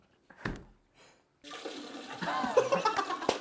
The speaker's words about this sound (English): It sounds like he's pissing in your fucking ear.